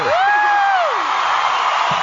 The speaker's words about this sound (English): Yeah, we got a crowd audience here. They love you.